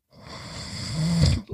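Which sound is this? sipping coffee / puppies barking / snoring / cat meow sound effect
snoring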